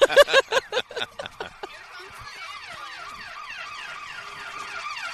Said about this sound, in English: By the way, nothing beats two ambulances stuck behind a garbage truck. I'm dying. That's not how those supposed to work.